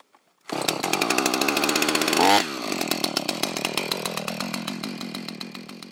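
A chainsaw starts up loud, revving hard for a couple of seconds before dropping into a steady, buzzing idle-and-cut rhythm as it cuts into a pine stump to search for pine hoverfly larvae in rot holes. No voices are present.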